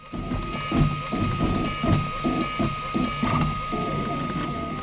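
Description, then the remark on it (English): A 3D printer whirs steadily as plastic is fed in, melted and laid down layer by layer. Its stepper motors produce a rhythmic series of tonal whines and pulsing mechanical buzzes as the head moves back and forth, fairly loud. “A small boxed piece of equipment where plastic is fed in and melted and then laid down layer by layer to form the 3D shape as determined by a computer file.”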